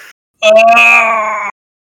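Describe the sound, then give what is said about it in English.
A person voices a creature's scream as an arrow pierces its heart: one loud, strained, wailing cry lasting about a second, harmonically rich with a steady high pitch, breaking off abruptly. No other sounds accompany it. “And the creature just starts screaming and writhing.”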